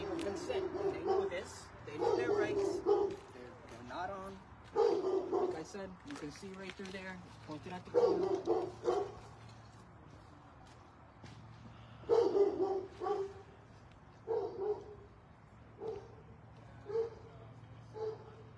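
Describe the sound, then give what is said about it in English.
Dogs bark loudly and repeatedly in irregular bursts throughout, with a steady low hum underneath and brief pauses between barking bouts. “These freaking dogs.”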